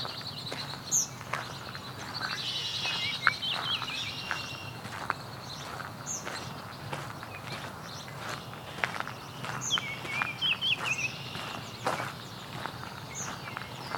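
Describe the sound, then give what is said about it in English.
A red-winged blackbird calls with sharp chirps and a couple of buzzy, rattling trills over a steady outdoor hiss, with soft footstep-like crunches underneath. No one speaks. “Red-winged blackbird.”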